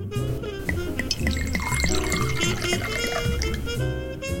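A 2006 La Crema Pinot Noir from the Sonoma Coast, California, is poured steadily into a glass, a gurgling, splashing stream with a faint ringing tone, lasting about four seconds with no one talking.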